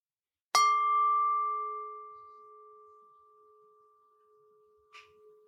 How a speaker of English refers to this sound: In a moment, I'll be ringing the bells, just paying attention to the experience of hearing. How it is for you.